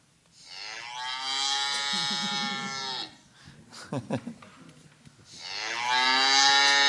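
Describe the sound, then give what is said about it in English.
A phone ringtone of a cow mooing: two long, loud, low moos with rich harmonics, separated by a brief pause holding a short burst of voice-like sound. “We're just going to remember the point, though, that there is one bona fide ringtone that anyone can...”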